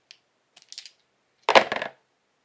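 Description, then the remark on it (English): Four dice being shaken and thrown onto a table: a few light clicks, then a loud burst of clattering as they tumble and settle, with no voices. “Okay, roll the dice.”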